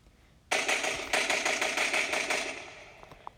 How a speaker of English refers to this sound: And in the distance, they heard an even louder gunshot. Just like that.